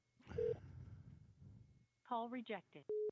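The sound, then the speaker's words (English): A phone line gives a brief tone, then a recorded voice speaks for a moment before a steady, loud beep cuts in, like a rejected call signal. “Rejected. How the hell wow. is it rejected from your phone number?”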